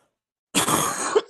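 cough

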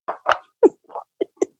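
cough

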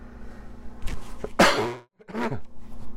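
coughing

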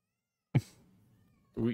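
cat meowing loudly

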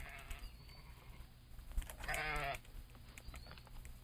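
sheep bleating

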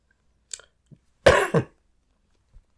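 coughing and throat clearing

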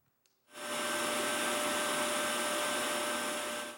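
vacuum cleaner running

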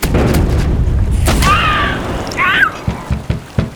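cannon fire

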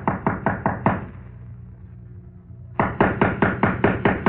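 knocking on a door

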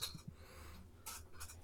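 pencil writing on paper

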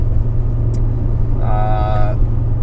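car interior road rumble

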